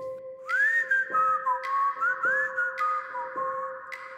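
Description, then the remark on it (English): A single person whistles a tuneful, old-timey song in the middle of the night, the notes gliding and wavering smoothly at steady volume over faint background hum, with soft clicks between phrases and no talking. “It was an old-timey whistle, like a...”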